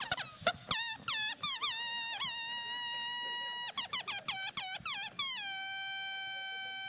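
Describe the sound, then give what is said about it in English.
A balloon squeals shrilly as air escapes, the high-pitched whine wavering and sputtering in quick bursts before settling into a long, steady screech. “I have lots of balloons.”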